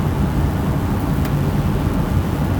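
A helicopter flies overhead, its engine a steady, heavy low rumble that holds constant throughout without fading in or out. No voices are present.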